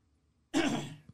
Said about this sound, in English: had to hit my cough button. That picked up in my mic. Damn it. I'll hit both of them next time. I was going to say, I heard the cough too.